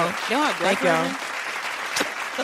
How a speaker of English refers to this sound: Right, well, y'all did it. Good job, guys. Uh-huh. Round of applause.